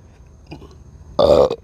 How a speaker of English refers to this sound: Listeners, I got to burp because right now,